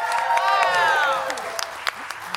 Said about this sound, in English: The here crowd, is now by the way, the crowd erupted like a volcano, guys.